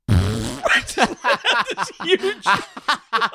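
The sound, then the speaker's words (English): A voice imitates a long fart with a buzzy, low raspberry sound, followed by a stretch of choppy vocal sounds like laughing or talking. “This huge fart. That was just as long. It was like a 30-second fart.”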